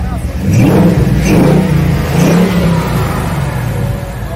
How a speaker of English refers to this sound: Nashville Super Speedway's Mach 1 Mustang pace car made a lap at Green Hill High School today.